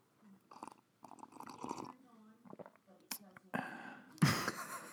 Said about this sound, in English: English breakfast tea sipping.